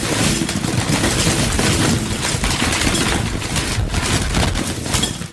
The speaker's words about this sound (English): Chips. Chips are being poured into a bowl. Chips in a bowl are fun.